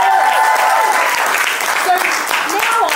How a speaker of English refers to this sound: So can we get a round of applause?